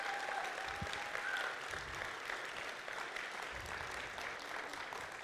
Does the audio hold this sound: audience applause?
yes